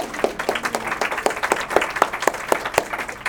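An audience breaks into applause, a dense wash of many hands clapping at once with a few sharper individual claps standing out, steady and fairly loud for a few seconds.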